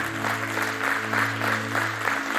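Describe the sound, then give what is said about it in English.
An audience claps together for the worship team in a steady, dense wash of applause with a low sustained hum beneath it, lasting a few seconds without a clear break. “Y'all give the worship team a hand clap.”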